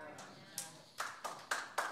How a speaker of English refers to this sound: Golf clap. I don't know if you, three of you are really excited.